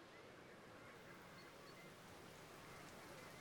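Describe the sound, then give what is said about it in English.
Steady rain patters down in a continuous, even, soft hiss with no breaks, with no voices over it. “Rain begins to fall, and yet there is no cloud directly overhead.”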